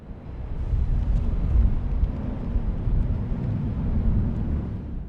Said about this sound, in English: That's a sense of the rumblings on a working wharf.